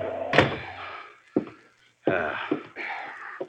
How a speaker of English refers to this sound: Kick the door shut.